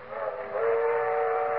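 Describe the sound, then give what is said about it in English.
A loud, sustained train whistle blows steadily for a moment over the low rumble of a moving train, with no voices. “They're traveling south by train this year.”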